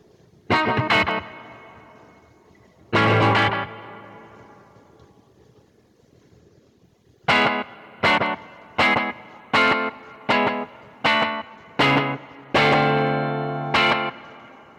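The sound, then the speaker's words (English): An electric guitar played through a pedal set to a short slapback delay with long reverb added plays a few sustained chords, then a run of sharp, evenly spaced stabs, each followed by a quick echo and a long washy reverb tail that rings out between hits. “The reverb is so long that it doesn't really go with the slapback idea.”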